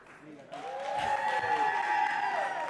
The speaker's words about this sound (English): Make that applause even louder and make sure you stream it live on Facebook. Here is the ….